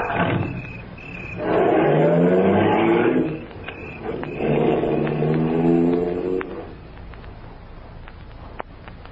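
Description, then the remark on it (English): A car engine roars loudly in two sustained revving bursts, its pitch climbing each time, then the noise drops back to a lower rumble as the car pulls away. “Roar after me like we're going someplace.”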